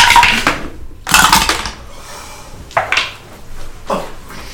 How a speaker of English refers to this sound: I think those new green dice you got don't like you. No, it's just the tower. Then don't roll in the tower.